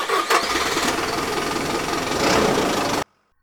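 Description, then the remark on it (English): An Impala's engine cranks with a brief whine, catches, and settles into a steady, rumbling idle with a slight rev near the end before cutting off abruptly. No one speaks. “Dickie popped the hood and stuck half his body under there while I ignited the Impala.”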